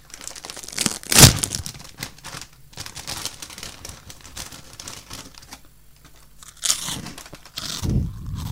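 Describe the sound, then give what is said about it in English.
A bag of Monster Munch crisps crinkles and rustles, with sharp crunchy bursts standing out early and again near the end, and steady crackly handling in between. No one speaks. “Monster munch.”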